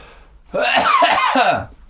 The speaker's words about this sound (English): I'm going to stop coughing at some point.